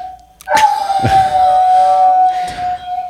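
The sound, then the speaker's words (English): A dog named Alice howls along with a ringing campground phone, the howl rising and wavering over the steady, high electronic ringing tone, punctuated by a few sharp thumps. “Our campground phone is ringing, and Alice likes to sing with it.”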